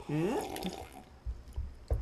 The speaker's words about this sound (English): That was that's one nice thing about monitoring my own audio is I can tell you how intense that slurp was.